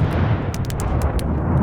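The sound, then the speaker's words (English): A fire barrel, with a gatepost heaved into it, bursts with a heavy, continuous rumbling roar, punctuated by a rapid series of sharp, loud cracking blasts like cannon fire, with no voices. “The barrel started simmering and cooking and heaving, and then all at once it exploded like a dozen cannons shooting themselves.”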